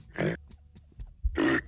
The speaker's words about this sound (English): What you downloaded for reindeer sound effects.